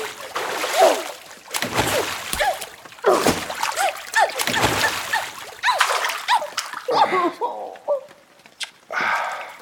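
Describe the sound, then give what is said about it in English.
Water splashes repeatedly onto someone, several loud sloshing bursts in quick succession, with voices yelping and talking between them. “If you do, I will splash you.”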